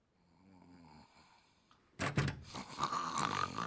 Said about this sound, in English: You're not in trouble, but the snoring does distract my sophomores.